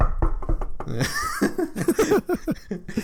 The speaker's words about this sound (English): Knock on wood. Knock on wood. If you're with me.